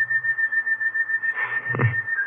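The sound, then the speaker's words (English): A lone whistle holds a long, steady, slightly wavering note of a sad tune, clear, with a brief low rumble swelling underneath near the end before the tone trails on. “Ever since I made my report, I've been hearing that song in my head. Like somebody whistling it.”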